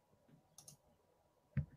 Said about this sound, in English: Oh, he's clicking around now.